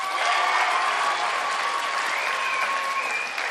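An audience at a chapel service applauds a speaker being introduced, in a steady, dense wash of clapping that stays loud and even for a few seconds, with a faint tonal hum running underneath and no voices standing out.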